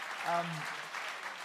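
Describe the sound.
An audience claps steadily throughout, a dense wash of applause heard from a moderate distance, with a single voice briefly calling out near the start.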